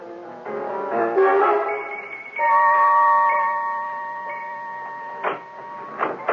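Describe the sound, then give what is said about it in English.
An electronic alarm sounds: a few shifting warbling tones, then a steady, high, sustained whine that holds for several seconds before a couple of sharp clicks cut in at the end. “Eh bien, chérie, wait here till I turn off the alarm.”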